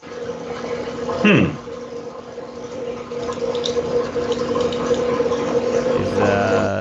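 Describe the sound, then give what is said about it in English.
A washing machine runs with a steady low mechanical hum and a constant wash of watery, gurgling draining noise, broken by one brief louder sweeping whoosh early on. “I got a washing machine running.”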